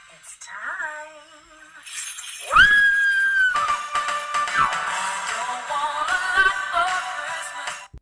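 Singer a singer, down on her knees in Christmas pajamas in front of her decorated Christmas tree with snow falling on her head, lets out a loud, high-pitched scream that starts abruptly and holds for several seconds, ringing over a dense, noisy wash of sound that continues after it fades.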